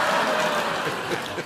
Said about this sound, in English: I'm sorry that we killed time with the applause.